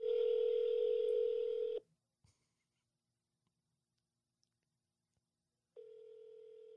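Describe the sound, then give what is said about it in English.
A phone line's ringing tone on a call to a Taco Bell restaurant: a steady electronic buzz that sounds for about two seconds, goes silent for several seconds, then starts again a little quieter. No one speaks. “It's ringing.”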